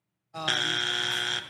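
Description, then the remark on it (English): A loud, harsh electronic buzz kicks in abruptly and holds steady for about a second before cutting off, the classic wrong-answer buzzer of the game show Family Feud, hosted by Steve Harvey, sounding on a contestant's answer, with a dense, raspy tone. “Why are they getting buzzed so quickly?”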